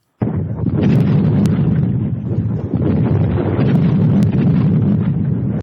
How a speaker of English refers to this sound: But then I've got some really, really bad sound effects. Like, this is supposed to be lightning from Zeus.